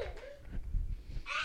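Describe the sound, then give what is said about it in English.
A low, rumbling burp drawn out for most of a second, followed by a brief breathy, airy sound that resembles a giggle or exhale. “Did you just burp on me?”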